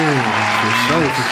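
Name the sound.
applause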